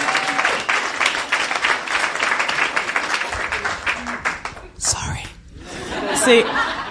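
An audience breaks into applause, a dense crackle of many hands clapping at once, with some scattered laughter and murmuring mixed in before it thins out near the end.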